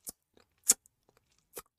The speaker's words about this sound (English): So, lick lipping. I meant lip licking, lip smacking, kissy noises. How about just that like wet mouth noise that people make?